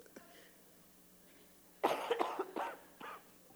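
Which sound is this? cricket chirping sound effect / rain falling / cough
cough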